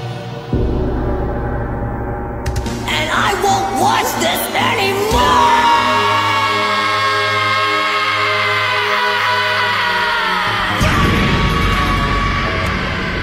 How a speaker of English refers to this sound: But, you know, Gohan unleashes that scream, and then bam, the transformation to Super Saiyan level 2 begins.